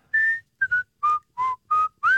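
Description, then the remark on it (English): Someone whistles a short tune of six clear notes, each pitch sliding slightly, in a steady rhythm. The whistling is fairly loud, with no talking over it. “It's like you took a five-year-old to the zoo, and they're like, Dad, I can whistle.”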